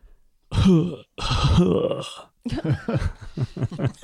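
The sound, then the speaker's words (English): During a game, a person imitates a hurt character coughing with two loud, raspy, groaning vocal bursts, each roughly half a second to a second long, as a sound effect before talking continues. “Thank you for that very accurate adding cough. Sound effects.”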